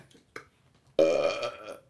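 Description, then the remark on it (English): A single loud, drawn-out burp after eating a hot dog erupts after a moment of near silence, with a rough, rumbling tone lasting nearly a second before trailing off. “Dog burp cologne.”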